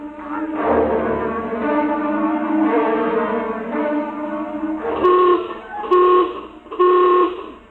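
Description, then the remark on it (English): A ship's general alarm klaxon blares, first in a long, wavering buzzy drone, then in three loud, evenly spaced honking blasts with short gaps between them. No one speaks. “General alarm. General alarm. Emergency stations.”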